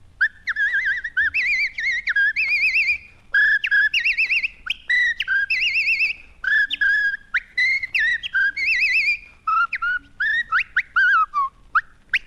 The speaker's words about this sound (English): Oh, I whistle, too.